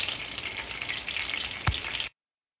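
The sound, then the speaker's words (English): Geoduck thrown into a pan of oil for a pasta dish fries with a steady, bright, hissing sizzle for about two seconds, broken by one sharp knock near the end before the sound abruptly stops. “then it's time to throw in the gooey duck. And then after it kind of all mingles in the oil, we put in the gooey duck broth.”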